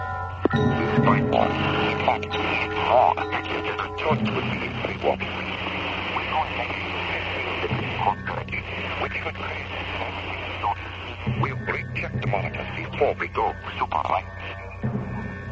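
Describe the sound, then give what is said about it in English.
A radio transmission drowned in loud, steady static hiss, with a muffled, garbled voice beneath it and the signal abruptly dropping out and cutting back in several times. “I don't know where all the hash is coming from, but there's some kind of interference.”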